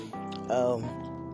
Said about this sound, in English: but like, lately I've been, yep, there they go. I probably can count how many times I yawn through this cast.